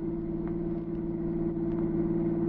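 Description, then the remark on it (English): A car engine idles steadily with a constant low rumble and hum, fairly loud, unchanging throughout with no voices. “Wait. Stop the car.”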